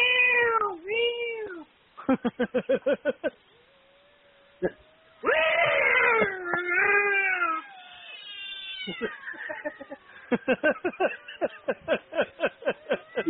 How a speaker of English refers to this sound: Considering there's cat sounds in the background.